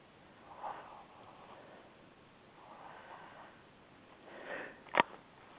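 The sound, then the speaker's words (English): Soft, slow breathing over a telephone line from a call-in caller with area code 857: three airy breaths at a steady rhythm, then a brief sharp sniff at the end. Faint and hissy, narrowband like a phone call, with no talking. “I think I can hear somebody breathing.”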